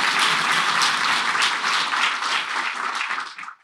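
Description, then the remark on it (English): A crowd applauds steadily, dense clapping from many hands at a fairly loud, even level, thinning and fading out near the end. “Let's applaud.”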